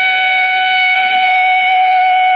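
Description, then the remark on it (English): A police car siren from a police car driving behind the listeners' car blares loudly, holding a steady, piercing tone rich in harmonics for the whole stretch, with no voices over it. “That siren. It's a police car behind us.”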